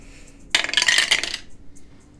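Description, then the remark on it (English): Dice clatter and tumble across a hard tabletop for about a second, a quick burst of bright clicks that settles into a few faint rattles before quiet returns. “Okay, maybe you need a different dice.”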